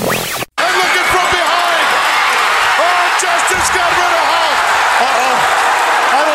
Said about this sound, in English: So first, I'm going to share with everyone the original commentators, Gorilla Monsoon and Bobby Heenan, calling the actual moment when Sid Justice eliminates Hulk Hogan. Listen to the crowd in the background.